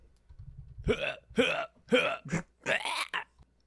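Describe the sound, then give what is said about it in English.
A person imitates a cat vomiting into a microphone: a low grumble, then about five loud, raspy gagging hacks in quick succession, each a short harsh burst with a retching heave. “And he turned into a cat and vomited on his microphone.”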